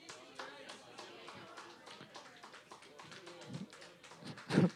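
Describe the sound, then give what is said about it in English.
A round of applause from a group at a trivia quiz, given to team number 11, dense overlapping claps going steadily for several seconds, with some voices murmuring underneath and a louder vocal burst near the end. “Please enjoy this complimentary round of applause.”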